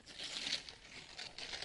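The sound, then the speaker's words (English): Wrapping paper crinkles and crumples steadily for a couple of seconds as a gift is unwrapped after its ribbon is removed, a soft, continuous rustling with brief louder bursts, fairly quiet, with no one speaking. “I got that ribbon off there. Okay. Can you help me with that paper?”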